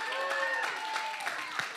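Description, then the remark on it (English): An audience at a church service claps in a steady, scattered patter of many hands, with sustained voices or tones humming underneath throughout. “Who's clapping?”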